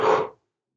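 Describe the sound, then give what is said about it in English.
A short, breathy voiced yawn from a single person, moderately loud, tapering off quickly into silence. “Sorry, I yawn when this happens.”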